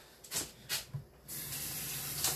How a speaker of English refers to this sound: Now I'm gonna rinse it with water that's got fucking cancer in it, so what's the point?